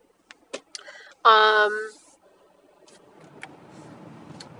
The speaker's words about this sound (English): Traffic. What else is new?